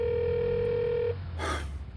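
A steady electronic telephone tone holds for about a second, then cuts off, followed by a short breathy burst of noise, like a phone line dialing and ringing with no voices.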